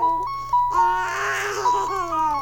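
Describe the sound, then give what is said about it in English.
A musical calculator's keys sound off as a string of bright electronic tones, each press a steady beep that jumps to a new pitch, with a denser, buzzier stretch of notes in the middle. “It's a musical calculator.”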